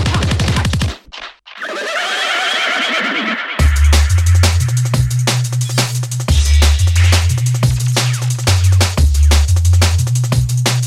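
A horse whinnies loudly for a few seconds, its wavering call breaking off abruptly as a pounding, bass-heavy music track with a steady beat kicks in and carries on.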